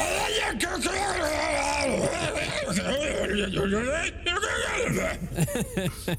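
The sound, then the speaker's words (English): A man's voice produces a continuous, loud, guttural growling made-up language, rough and throaty with rising and falling pitch, imitating Draconic speech, ending with a few sharp bursts. “But I also say it in Draconic.”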